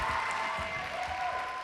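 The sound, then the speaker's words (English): An audience claps steadily for a poet after judges hold up scores, a dense, even wash of many hands that holds at one level for the whole brief stretch, with no voices on top. “Please applaud the poet.”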